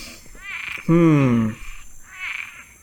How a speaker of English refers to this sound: Again, you're close. It's actually a tree frog. So, Hylidae. Yep. And it's the Cuban tree frog, Osteopilus septentrionalis.